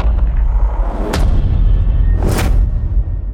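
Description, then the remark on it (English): A TV sound effect: a swelling, hissy reverse cymbal rushes upward and lands on a deep, rumbling boom hit, repeated twice over a heavy low-end drone, loud with no talking. “There's also the reverse cymbal. And lots of different types of hits.”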